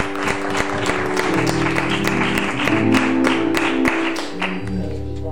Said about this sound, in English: If you feel that way too, why don't you just praise the Lord, give the Lord an applause. Amen.